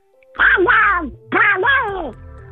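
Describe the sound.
Two loud bursts of a raspy, squawking cartoon-duck voice, someone doing a Ronald Duck impression with garbled, quacking babble and sliding pitch, a brief pause between them.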